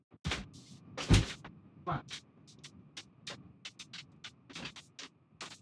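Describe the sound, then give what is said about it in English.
A door opens with a sharp clunk of the latch as someone lets in a dog that was crying at the door, followed by a scatter of softer knocks, rattles and shuffling sounds over a low steady hum. “I got to let my dog in. He's crying at the door.”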